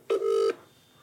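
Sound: telephone keypad dialing tones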